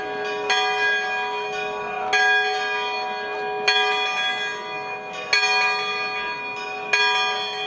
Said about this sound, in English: So in May this year, the sound of church bells echoed around the western Catalan village of Os de Balaguer. And it wasn't just, you know, calling people to attend mass, as you might expect. It was their annual bell ringers gathering,